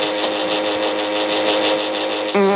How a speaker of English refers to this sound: I added the fart.